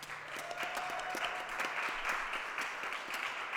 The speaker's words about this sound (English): Let's hear some applause.